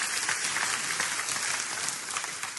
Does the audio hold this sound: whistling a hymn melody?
no